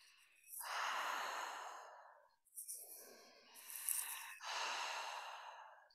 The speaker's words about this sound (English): so it wants to be quite deep into the belly, even inhalation, even exhalation. So if you think of a circle, your inhalation is half a circle, exhalation the other half, continuous circular breathing. You want to be able to hear your own breath.